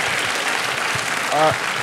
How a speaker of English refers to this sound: So give him a big round of applause real quick.